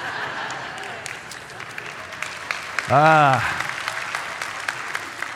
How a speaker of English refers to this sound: Every preacher's dream, clapping for the joke that I wrote.